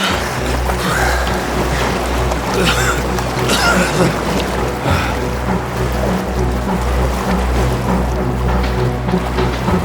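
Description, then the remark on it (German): Waves wash and splash steadily around a luxury yacht on the open Central Atlantic near the Canary Islands, with a constant low engine rumble underneath and a few louder surges of spray, all continuous. “Erschöpft schwimmen er und die anderen zur Explorer, Margots luxuriöser Yacht”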